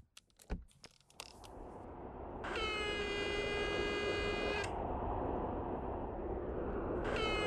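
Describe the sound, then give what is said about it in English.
A few sharp clicks of buttons being pressed on a gate intercom, then a loud, steady electronic buzz lasting about two seconds as someone at the gate buzzes the house, followed by a second buzz starting near the end over a low background hum. “I'm just going to buzz him.”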